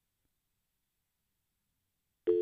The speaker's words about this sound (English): Oh, there's …, and it's a dial tone.